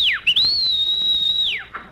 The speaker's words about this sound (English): Why did you whistle?